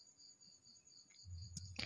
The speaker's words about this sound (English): I want to apologize for the sound of crickets, which is quite disturbing because it's night time.